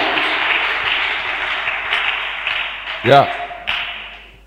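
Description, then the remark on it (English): An audience claps together in a dense, steady wash of applause that holds throughout, with a brief voice rising out of it partway through and a sharp burst of clapping near the end. “No, and this, if you want, you can clap.”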